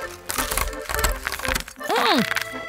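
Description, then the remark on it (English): Someone bites and chews dry, uncooked spaghetti noodles instead of waiting for the water to boil, making a rapid series of loud, brittle crunches and snaps, followed by a brief voiced exclamation that swoops up and down in pitch. “Crunchy!”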